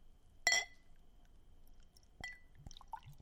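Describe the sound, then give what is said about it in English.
A sharp glassy clink opens, followed by a few soft, wet gloops and bubbly drips with quick pitch slides as thick dark beer pours into a glass. No one speaks. “It kind of glooped at the beginning, but I didn't get it here. Heard a little bit of that gloop going on.”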